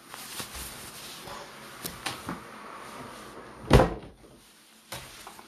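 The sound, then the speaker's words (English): A window is shut with one loud, solid thud after a few light clicks and rattles of handling. No one speaks, and a faint tap follows a moment later. “is there a bit of background noise from my window? Or not really? No, you would hear me. I'm just wondering if you hear a bit of interference. Okay, just going to close it.”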